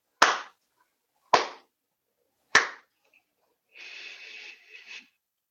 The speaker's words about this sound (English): Or I can just clap my hands. If you would, please. Yeah, just clap my hands. And then in 5 minutes, I'll clap them again. And then we'll stop.